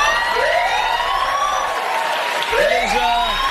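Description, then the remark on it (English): A loud alarm siren, one found backstage, wails continuously, its layered tones sweeping up and down in pitch over several seconds, with no voices. “Oh, I'm sounding the alarm, Jimmy.”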